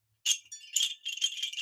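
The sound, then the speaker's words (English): Bamboo wind chimes clatter in a steady, jumbled stream of hollow wooden clacks and knocks, fairly bright in tone, continuing for over a second with no voices. “Moving on to some wind chimes, we got bamboo wind chimes.”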